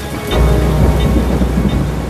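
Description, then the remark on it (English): Heavy rain pours down in a dense, steady roar, with a deep rumble of thunder underneath. It's loud throughout, with no voices. “It would certainly be challenging, and you might want to produce some umbrellas for the tourist office gift shop, as it doesn't just rain here, it hammers it down.”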